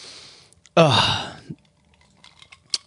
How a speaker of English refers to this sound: These are going to be some clinky ice cubey drinks on the whatever.